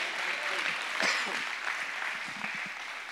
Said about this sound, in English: Got done preaching, did an altar call. 22 people came down and gave their lives to the Lord. That's your chance to clap and say thank you, Jesus, right there.